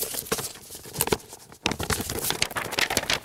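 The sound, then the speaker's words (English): A box is opened and a paper inside it rustles, a steady run of crisp crinkling and scraping with a brief pause partway through. No one speaks. “I only keep it in this box and only I can open it. Let's try peeking inside together.”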